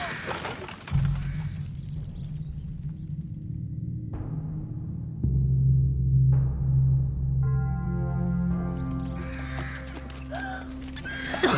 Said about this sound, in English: Yeah! Horses, move! We're so steady.